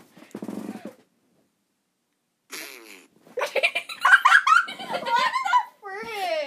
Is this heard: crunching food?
no